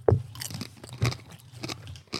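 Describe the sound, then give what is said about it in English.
Crunchy chewing right against the microphone, with several loud crisp bites and crackling mouth sounds in an uneven rhythm, no talking. “Getting that crunch on there, boys.”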